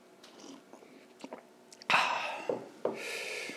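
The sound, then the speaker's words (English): Slurping of hot tea in Cork: a few faint mouth clicks, then a long airy slurp followed by a second shorter one, loud, with no talking. “Okay, let me just sit down here and slurp a bit of tea.”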